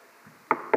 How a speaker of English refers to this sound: A knock comes on the door. And I open up, and there he is.